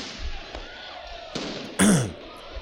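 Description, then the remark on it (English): A few sharp bangs of fireworks pop, spaced irregularly, ending with a louder, fuller finale burst that crackles briefly over a low murmur of background noise. “Careful with the fireworks, yo.”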